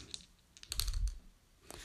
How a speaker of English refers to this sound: So let's roll up. Monster Manual 1 again. Need to shake this dice a bit harder or something.